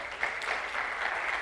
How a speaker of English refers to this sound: As we get started, yeah, thank you, absolutely. Yeah, if their dad's here, we can cheer for them, we can clap for them, that's all right.